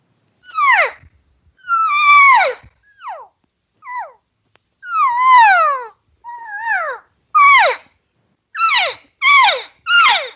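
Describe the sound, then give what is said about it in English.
A string of about a dozen imitated elk cow calls, short high squealing mews that slide downward, the caller changing the pitch from one to the next to sound like different elk, loud and irregularly spaced with no talking. “I'll change the pitch a little bit, trying to sound like a different elk.”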